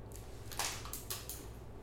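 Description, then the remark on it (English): A refrigerator runs with a steady, low electrical hum throughout, while a few brief, sharp clinks and rattles break in over the drone. No one speaks. “No, it's a fridge.”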